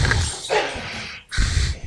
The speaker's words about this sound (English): Your little dog beat your big dog out for the toy that they're playing with. Yeah, he does it on purpose just so he can try and steal it from him again.